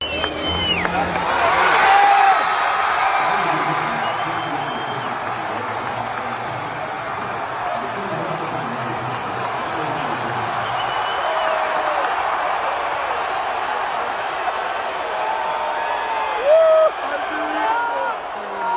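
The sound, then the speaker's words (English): A large rally crowd roars and cheers steadily for nearly twenty seconds, a dense wash of voices with a few sharp whistles and whoops rising above the din. “Let's compare the adulation of Trump with the adulation of Joe Biden.”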